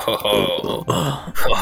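A loud, drawn-out burp into a microphone, gravelly and throaty, rolling on for over a second with a couple of brief catches before it trails off.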